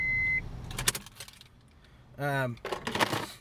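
Keys jangle in two short, bright bursts of metallic clinking, clear, separated by a brief low hum and a moment of near quiet.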